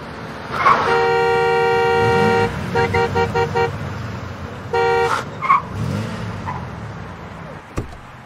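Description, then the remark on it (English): A car horn blares in one long blast, then a rapid string of short honks and another brief blast, loud over a steady rumble of traffic. “Cut me off, you son of a bitch! Get the hell out that car!”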